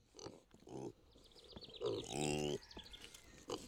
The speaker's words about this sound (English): Okay, so these are Kuni Kuni pigs, K-U-N-E, K-U-N-E, and they actually are a red meat.